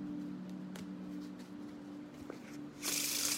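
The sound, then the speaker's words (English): A few soft taps and flicks of cards, then a brisk riffle as a deck of tarot cards is shuffled by hand for a tarot reading, a dense papery hiss over a faint steady hum. “I need to remember to shuffle the cards.”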